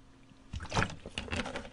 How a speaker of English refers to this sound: Hold on, swig of water.